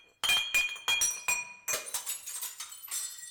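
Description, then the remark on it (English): Glasses clink together for a shot in a quick series of bright, ringing taps, the first few sharp and spaced, then a denser cluster of lighter chimes. No voices are heard. “let's pour one out and do a shot”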